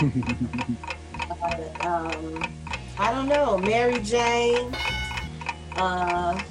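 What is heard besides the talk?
ticking game clock countdown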